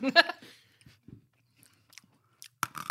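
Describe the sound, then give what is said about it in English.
A loud, crunchy bite into a snack, followed by quieter chewing and another burst of crisp crunching near the end. “I think that's a healthy crunch. It's like, dude, like an apple.”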